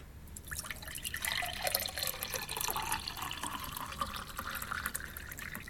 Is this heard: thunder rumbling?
no